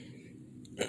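A short, rough throat clearing bursts out at the very end after a quiet, low hum, harsh and noisy and louder than what comes before.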